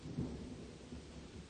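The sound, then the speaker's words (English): Low rolling thunder rumbles beneath a steady hiss of rain as a storm picks up with gusts of wind, fairly quiet and continuous, with a slightly stronger swell near the start and no voices. “She realized that the storm was picking up, the sound of thunder closer than before.”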